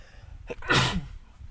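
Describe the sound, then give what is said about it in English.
A single sharp sneeze bursts out after a quick breath in, then fades into quiet room tone. No one speaks. “I think I have to sneeze.”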